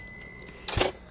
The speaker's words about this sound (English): You hear the little cash register? Trade it.